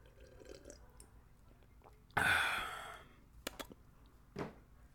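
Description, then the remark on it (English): Someone takes a drink of water during a break: a loud, breathy rush of air fades out, followed by a few small wet gulping clicks and a soft swallow, with no talking. “Water break, boss. Don't mind me, boss.”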